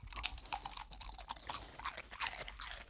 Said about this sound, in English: And you have such a cute crunch. I'm going to hold the microphone down by you while you eat these, okay? I want everyone to hear how good you sound when you eat crunchy food. Are you ready, Mabel? Do you want some of these? Okay, here you go.